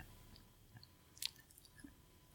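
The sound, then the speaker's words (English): Quiet chewing of food with small wet squishes and a brief crunchy click partway through, irregular mouth sounds against a soft background hush, no talking. “Wait until I'm done chewing and then I'll introduce myself again.”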